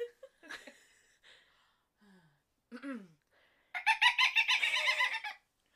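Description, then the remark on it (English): A person imitates a dolphin with high, squeaky whistles and gasps, ending in a loud burst of rapid, pulsing chattering clicks that rises and falls for about two seconds. “Do you want to hear my dolphin?”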